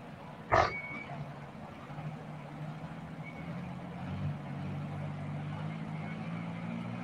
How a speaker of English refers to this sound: As he gets to the green lane and a green flag, he'll wind it up and start rolling some coal.